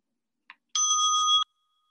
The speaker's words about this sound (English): And now I invite you to call on your image of the holy, of the sacred, as we enter into a time of shared silence with the sound of the ringing of the bowl.